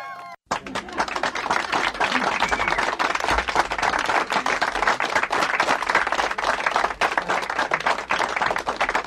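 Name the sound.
crowd applause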